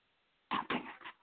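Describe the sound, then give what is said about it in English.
After a brief silence, a dog named Charlie lets out three quick barks at Daisy, who is running around the house, fairly loud and a little muffled, with the last one slightly softer. “That was Charlie barking at Daisy for Daisy running around the house.”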